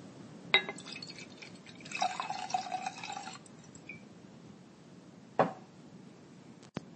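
A drink is poured into a glass, a couple of seconds of liquid splashing and filling, framed by sharp clinks of glass at the start and near the end, with no talking.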